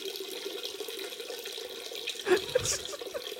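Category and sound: sound effect, running water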